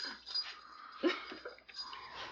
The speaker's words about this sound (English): Her face is full of dog tongue.